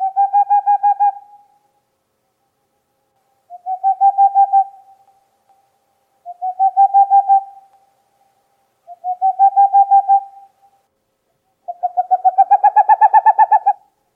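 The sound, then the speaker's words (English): A boreal owl calls in five bursts of quick, hollow hoots, each a rapid trill lasting about a second and a half, spaced a few seconds apart; clear, with the last burst loudest. “It's the boreal owl.”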